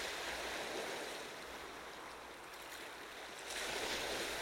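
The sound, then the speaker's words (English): Ocean waves wash steadily onto the shore in a broad, continuous hiss, easing slightly before a fresh surge swells in near the end. No voices, just the enveloping rush of water. “Peace enters your mind as you connect with the rhythm of the waves.”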